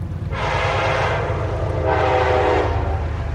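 A train rumbles past on tracks along the Hudson River with a steady low roar, sounding two long horn blasts in a row, the second starting after a short gap.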